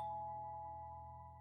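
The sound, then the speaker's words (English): A house doorbell, rung by a visitor on the porch, chimes as a steady, bell-like tone that hangs in the air and slowly fades, fairly quiet, with no voices or other sounds around it. “Percolator under one arm, I ring the bell.”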